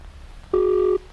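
signal or alarm, telephone ringing

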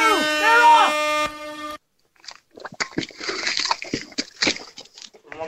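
signal or alarm, horn blast

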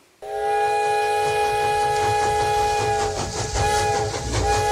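vehicle, train

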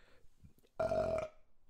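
human body sound, burp

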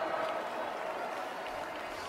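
crowd, tepid applause

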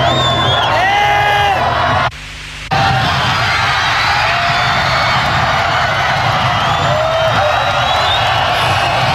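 crowd, crowd cheering

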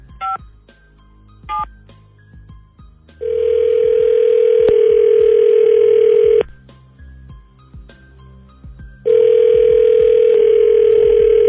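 signal or alarm, telephone dialing and ringing

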